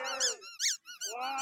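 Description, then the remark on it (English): A rubber toy chicken, squeezed by a woman at a protest with police officers present, squeaks in a run of loud, high, harmonic squeals, some long and wavering and others short, with brief gaps between squeezes and no talking. “What is the purpose of squeezing that chicken, ma'am?”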